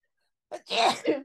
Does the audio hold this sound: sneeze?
yes